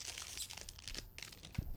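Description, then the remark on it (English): Crinkling of a Kinder Bueno candy bar wrapper being opened, the bars individually wrapped inside a bigger package: a steady run of quiet, irregular crackles and rustles with a soft thump near the end, and no voices. “Oh, they're in their own little prepackage inside of a bigger package.”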